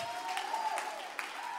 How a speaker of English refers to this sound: Give the Lord a good hand clap of praise and let's worship him.